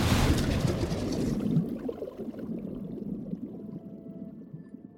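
Water plunges with a loud, hissing splash at the start, then settles into a steady, low churning rumble that continues to the end. No voices are heard.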